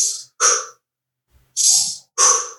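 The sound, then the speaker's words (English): Fast breathing: two quick pairs of loud, airy breaths, each an inhale through the nose followed by an exhale through the mouth, separated by a short pause. No talking. “Gear 4 becomes nose in, mouth out.”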